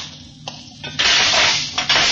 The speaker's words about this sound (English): Then I'll open the hatch.